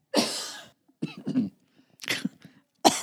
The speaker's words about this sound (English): This is our cough break.